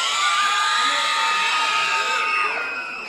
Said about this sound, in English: Look at that high-pitched scream. Oh, my goodness. Oh, my goodness.